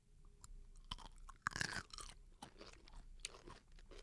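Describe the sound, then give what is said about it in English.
A small spicy snack is bitten with one loud crunch, followed by a steady run of crackly chewing crunches. No one speaks. “How do we do this? Do we crunch? I guess we try.”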